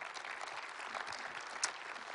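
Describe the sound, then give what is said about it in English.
A church crowd applauds steadily, dense overlapping claps forming a continuous hiss-like patter at moderate volume, with one sharper clap standing out near the end. “Yeah, you can give that a round of applause.”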